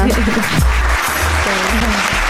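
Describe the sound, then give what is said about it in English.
A loud, steady round of applause from a group in a room, cheering a guest on a show who is leaving to join her country's national football camp. Dense clapping fills the whole stretch with no pause, while low voices murmur faintly underneath. “Quick round of applause for her there.”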